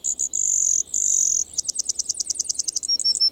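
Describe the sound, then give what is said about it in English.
A Brewer's Sparrow sings alone, clear: long high buzzy trills give way to a rapid series of bright, rhythmic chirping notes, with no talking. “While most birds offer a melody, the Brewer's Sparrow seems to perform an entire aria.”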